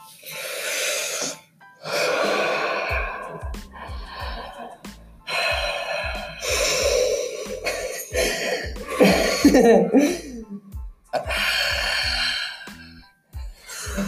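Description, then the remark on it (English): Loud breathing right into the microphone, about 15 seconds of deliberate heavy inhales and exhales in uneven bursts with gasping, snorting and wheezing edges, separated by brief pauses. “So let's end it with 15 seconds of breathing, starting in now.”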